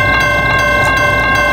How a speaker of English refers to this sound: And then all of a sudden, you know, bam, there's the train. He was honking his horn, and the lights started flashing.